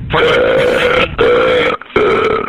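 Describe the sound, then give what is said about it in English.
Three loud, drawn-out burps in quick succession, each a rough, voiced belch lasting most of a second, separated by brief pauses, clear with no talking. “Okay, burp once if you have something caught.”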